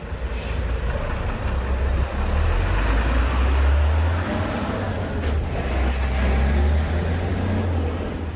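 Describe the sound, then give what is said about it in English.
Heavy traffic rumbles steadily and loudly through the town of Macroom, with trucks and buses producing a deep, continuous engine drone and occasional air-brake hiss. No one speaks. “Instead, for the last 40 years, it's been choked by traffic.”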